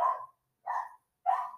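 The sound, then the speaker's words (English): A dog barks three times in a steady rhythm, each bark short and sharp with brief silences between, moderately loud with no talking. “And there goes my dog barking again.”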